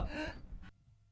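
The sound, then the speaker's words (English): A single loud, breathy sneeze bursts out with a harsh airy rush, then cuts off abruptly, leaving quiet low hum afterward. No one speaks. “All right, sorry. Sneezing fit.”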